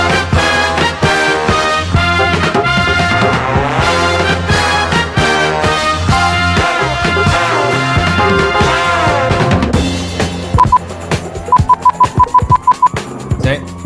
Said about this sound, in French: T'as entendu le bip? Yep. Ok, bah. C'était du morse.